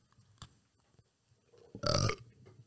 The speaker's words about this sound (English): We're just going to burp and chew into the microphones.